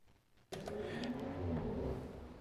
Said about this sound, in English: I thought he was revving up.